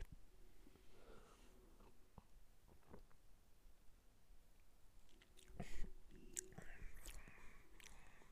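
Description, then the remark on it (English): Quiet mouth sounds of someone taking a sip of an orange-amber beer, darker than a standard commercial lager: soft slurps, a swallow and wet lip smacks, with a brief louder burst midway and faint breathing, no talking. “So let's give it a sip.”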